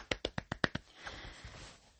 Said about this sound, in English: And we have to thank our designers. So if you're a designer, I am clapping for you.